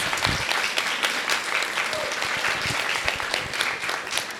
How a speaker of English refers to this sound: So let's give a round of applause to them.